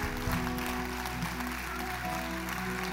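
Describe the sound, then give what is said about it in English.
An audience claps steadily, a dense, continuous wash of many hands at an even level throughout, with a low steady hum underneath and no clear voices standing out. “Keep clapping. It's okay. Your hands will hurt just for a little bit longer.”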